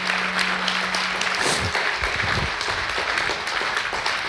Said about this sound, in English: Before we get any further, could we just give a hand clap of praise to God for those who gave their lives to Jesus?